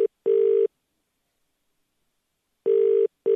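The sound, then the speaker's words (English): A ringback tone on an outgoing phone call to a contest entrant picked at random: steady electronic double-burst rings separated by a long pause, heard clearly and alone with no talking; the phone goes unanswered after five rings. “Answer the call within five rings, and the money is yours.”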